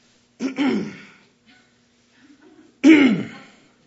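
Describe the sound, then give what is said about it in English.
A voice imitates an elder in a church audience clearing his throat twice, with a rough, gravelly burst near the start and another louder one near the end, separated by a brief quiet gap with faint murmuring. “He's just going to clear his throat, raise his arm in the air, look at his watch, and keep looking at the preacher.”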